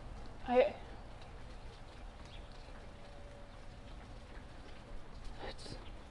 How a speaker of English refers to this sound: It's really raining though